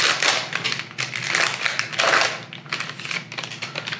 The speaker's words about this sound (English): Open up our fancy vacuum sealed pack here.